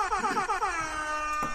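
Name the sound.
air horn sound effect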